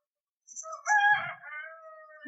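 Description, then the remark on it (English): A single rooster crows, a loud cock-a-doodle-doo that rises, holds, and trails off over about two seconds, with no talking over it. “And the rooster crowed.”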